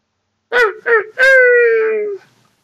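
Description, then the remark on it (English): A person imitates a coyote with two short yips followed by one long, sustained howl that slowly falls in pitch and fades, loud and alone with no other sounds. “Why don't you try barking like a coyote?”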